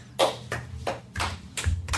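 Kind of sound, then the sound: human body sound, hands clapping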